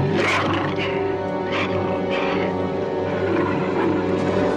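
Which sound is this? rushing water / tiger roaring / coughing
tiger roaring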